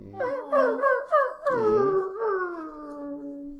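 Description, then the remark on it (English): A voice imitates a little squig whimpering, with a run of short, wavering high whines that slide into one longer, drawn-out moan. It is fairly loud, with no talking. “And you see one little squig just start to whimper.”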